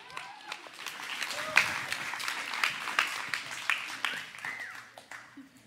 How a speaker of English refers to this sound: So give him a big round of applause as he ascends the stage.